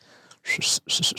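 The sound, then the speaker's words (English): A voice imitates a local signal whistle, heard at a gas station, with two short, breathy, airy bursts, more hiss than clear tone. “You know, that was the local whistle.”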